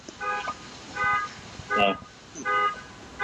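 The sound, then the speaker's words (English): A car alarm or horn from the downstairs tenants' car sounds outside in repeated short bursts with pauses between them, moderately loud over a steady background hum. “It's our tenants downstairs. Their car's doing it.”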